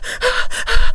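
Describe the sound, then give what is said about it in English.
Heavy, labored mouth breathing: quick ragged in-and-out breaths, about four in a second, loud, with an airy rasp and no talking. “Labored breathing, for sure.”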